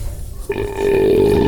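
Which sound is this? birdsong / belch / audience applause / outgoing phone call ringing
belch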